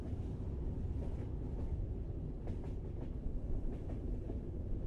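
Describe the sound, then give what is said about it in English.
A train rolls steadily along the rails, a dense low rumble with faint rhythmic clatter running through it, continuous, with no voices. “When I hear this sound of the train moving, picture myself on it.”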